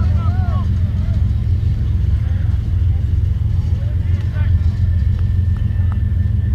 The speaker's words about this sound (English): Well, we've got another train going by. That's the sound that you hear in the background.